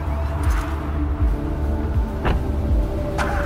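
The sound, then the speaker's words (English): A car engine rumbles as the vehicle pulls away, a steady low drone holding at an even loudness with a few faint clunks and rattles on top. No one speaks. “Davis's 12-year-old son watched from the upstairs window as the car pulled away.”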